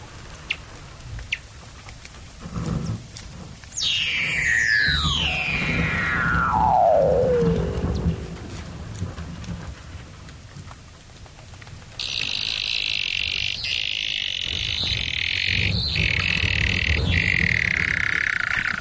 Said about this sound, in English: and the seals gather on the edges, hauled out, but also vocalise under the water.